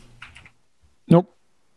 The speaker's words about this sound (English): Go ahead and keep typing Doritos into your thing.